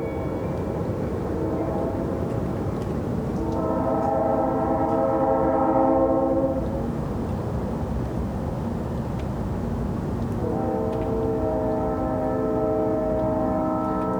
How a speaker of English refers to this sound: I live about 2 miles uphill from some train tracks, and the midnight air bends and twists the train horns into an eccentric symphony.